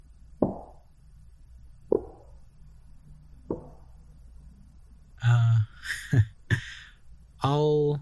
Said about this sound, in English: SCP-6096 is barely audible as it gently knocks on the front door.